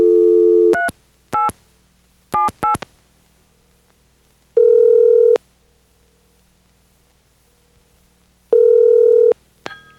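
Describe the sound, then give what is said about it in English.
A phone line hums with a dial tone before a quick series of keypad dialing beeps, followed by two long, evenly spaced ringing tones, loud and clear with no voices. “So we're going to try and give it a ring later. And let's do it now.”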